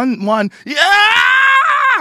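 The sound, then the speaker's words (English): A man mimics Howard Dean's campaign scream: two short grunting bursts, then one long, loud, strained yell rising in pitch and held for over a second before cutting off. “One yell, and it tanked the whole thing.”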